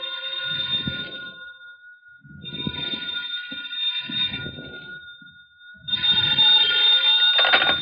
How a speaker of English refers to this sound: Then the phone rang.